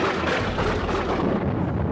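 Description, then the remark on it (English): Loud, continuous rolling thunder rumbles through a heavy storm, a dense roar that fills the whole two seconds without letting up. Nobody speaks. “No one's going out in that kind of storm.”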